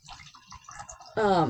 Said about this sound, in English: I need more wine. Yeah, if you can hear that obnoxious pouring.